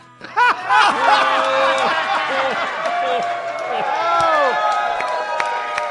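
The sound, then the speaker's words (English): An audience bursts into loud, fake, exaggerated laughter, whoops and clapping all at once for smokers. The overlapping voices rise and fall in pitch above a steady wash of applause lasting several seconds. “All right, everyone, loud, fake laughter and applause for all those smoking people so they think they're missing something.”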